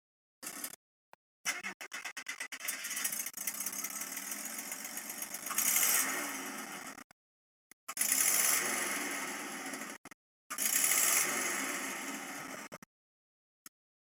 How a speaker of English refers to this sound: Well, this week's engine note is very interesting. It is a 1973 Chevy stepside pickup truck. It was a inline six, 250 horsepower motor.